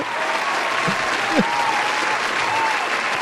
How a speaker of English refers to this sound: Golf clap.